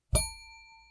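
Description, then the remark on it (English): A single bell is struck once, ringing out with a bright metallic attack and several sustained overtones that slowly fade, clear with no one talking. “To help me control my rowdy panel of recidivists and reprobates, I will employ what I've called the inappropriate bell.”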